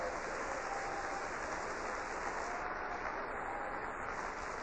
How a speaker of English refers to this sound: Would you clap your hands and praise him for it this morning?